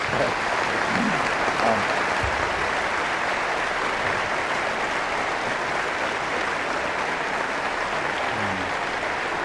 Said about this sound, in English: By our presence here today, we show our appreciation to them for their exceptional performance, but we can also demonstrate it in another way. I would like to suggest we give them a rousing hand of applause for a job well done. Thank you.